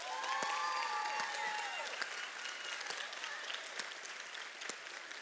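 A crowd claps steadily for several seconds, a dense wash of hand claps with some sharper individual claps standing out, plus a few faint whistling or cheering tones early on.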